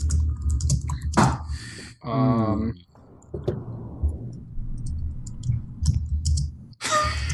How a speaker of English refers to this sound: Sorry. See, this is why I was typing and standing and I couldn't talk.